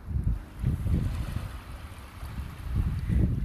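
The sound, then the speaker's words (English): Low, rumbling ocean waves swell and recede in a steady rhythm as they roll onto a beach shore, with a gusty breeze buffeting the microphone throughout. No voices, just continuous outdoor water and wind noise. “The sounds of the waves gently rolling on the shore.”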